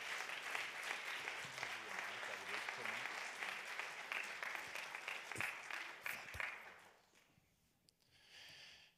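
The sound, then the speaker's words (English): An audience applauds the pastor with dense, steady clapping for about seven seconds, then the applause thins and fades, leaving a brief quieter hiss near the end. “Yeah, let's give Pastor a round of applause.”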